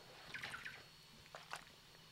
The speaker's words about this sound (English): Sorry, quick water break.